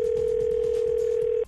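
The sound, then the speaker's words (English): A steady, continuous telephone dial tone hums loud for over a second as a wake-up phone call is placed, then cuts off abruptly, with faint background noise beneath it and no talking. “why don't you call my dad and give him a wake-up call?”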